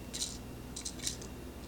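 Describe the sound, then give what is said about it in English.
A few quick bursts of small metallic clicking and scraping, fairly quiet, as a key is fiddled into the wind-up mechanism of a toy robot. No one speaks. “So you just put the key in like that, wind it up.”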